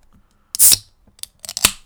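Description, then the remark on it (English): A can of soda with 34 milligrams of caffeine is cracked open with a sharp pop and a brief bright fizzing hiss, followed by a few small metallic clicks. No one speaks. “I'm opening the can.”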